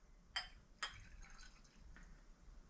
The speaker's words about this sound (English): The next thing we can hear is the actual pouring into a glass, and a little bit of the rattling of glasses as it's pouring.